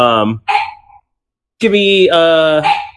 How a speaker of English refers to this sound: sorry, I got a really angry puppy right now, if you can't tell.